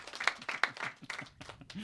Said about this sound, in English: Not expecting too much more of that applause.